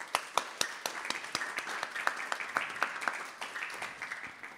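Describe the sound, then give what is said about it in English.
Light, scattered applause from a small audience: uneven, half-hearted claps at a fairly low level, with no voices over them. “One suggestion, if you ever clap for anybody, really lean into it. Otherwise, it's like peep, peep, peep, peep.”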